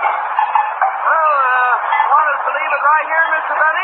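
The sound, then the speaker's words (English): A human voice imitates the sputtering, wheezing engine of Jack Benny's old Maxwell car as it is driven in, a continuous warbling, honking drone with wavering pitch that runs steadily for several seconds. “Will you drive my Maxwell in, please?”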